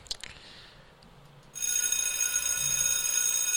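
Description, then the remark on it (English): A bell is rung in memory of Lou Olsen, the late University of Arizona basketball coach; it rings out suddenly after a quiet moment, its bright, shimmering high tones sustaining loudly and steadily to the end without fading. No voices are heard. “Let's ring the bell for him.”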